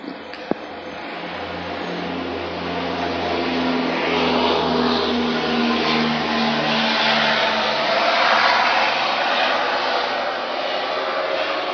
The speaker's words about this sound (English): Wait for this plane to go by. Sound like a fucking cargo plane or some shit.